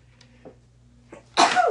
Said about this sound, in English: It's just, I feel like I'm gonna sneeze. Hold on.